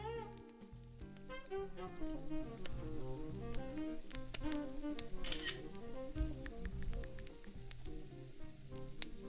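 Pork schnitzel sizzles loudly in a frying pan that is being used for the first time, a steady dense crackle with frequent sharp pops and spits that continues without pause, and no voices present.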